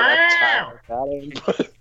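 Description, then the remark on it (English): A voice imitates a chainsaw-like cat noise, letting out a loud, strained yowl that falls away, then a shorter moan and a few rough, sputtering bursts, with no other sound behind it. “I love how it's a chainsaw cat noise, like the other.”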